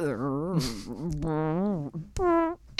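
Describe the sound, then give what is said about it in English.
A voice imitates a fart with a run of wobbly, pitch-bending vocal noises, a long warbling stretch followed by a shorter rising burst, loud. “Oh, now that fart is dangerous.”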